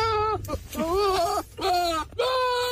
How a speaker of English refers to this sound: a lot of people didn't realise it is actually a goat